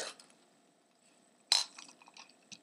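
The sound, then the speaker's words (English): Someone gulps a drink of water: a wet slurp, a quiet pause, then a sharper sip followed by a few soft clicking swallows. Fairly quiet, with no talking. “I needed some water. Sorry.”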